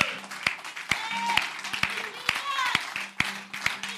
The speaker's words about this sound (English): Just begin to clap your hands. Begin to clap your hands for the Lord. Thank Him.